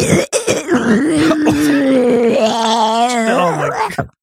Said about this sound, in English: Let me clear my throat.